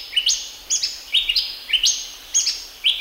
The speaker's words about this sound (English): When those birds sing their late afternoon calls, that's a signal to the children to go back home.